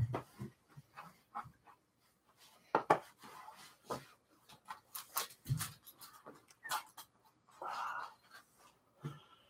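Irregular clatter of keys being struck on a computer keyboard, quick bursts of sharp clicks and taps with brief pauses, heard on its own without anyone talking.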